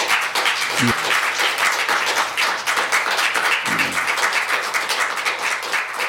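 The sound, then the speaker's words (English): Sustained applause in a council chamber after a motion to approve a development code passes unanimously: a dense, steady patter of many hands clapping at an even loudness for several seconds, with a couple of brief voices audible underneath. “Motion to approve the development code passed unanimously to applause.”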